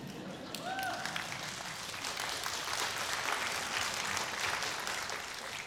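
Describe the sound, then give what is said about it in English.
An audience applauds steadily, a dense wash of many hands clapping at an even loudness for several seconds, with a brief whooping cheer rising over it near the start. “So while we're clapping, I just have to give a little shout out”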